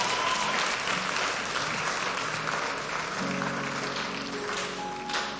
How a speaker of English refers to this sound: Am I in order? Who is going to clap for me in this hall now?